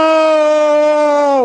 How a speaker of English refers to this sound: I scream as I'm driving, pounding my steering wheel.